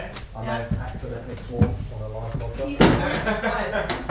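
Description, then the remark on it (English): A door slams shut with a loud, sharp bang, amid several lighter knocks and thuds, while people chatter and laugh in the background. “That door hurts my ears.”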